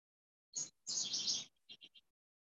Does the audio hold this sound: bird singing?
yes